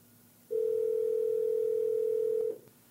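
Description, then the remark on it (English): A steady telephone dial tone hums for about two seconds, loud and unbroken at a single pitch, then cuts off, with no talking over it, as a phone call is being placed. “Let's give her a call.”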